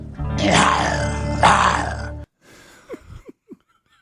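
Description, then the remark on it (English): A person lets out a loud, rough growl imitating a lion, swelling twice over about two seconds, then a few short, quieter vocal grunts. “There was a lion, so I just started growling like a lion.”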